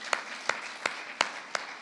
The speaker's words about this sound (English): So let's give a clap for Jesus.